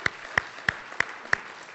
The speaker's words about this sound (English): Can you give the Lord a hand clap this morning because He's good?